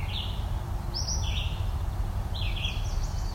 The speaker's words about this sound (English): Yeah, over there. It's also American goldfinch singing, calling.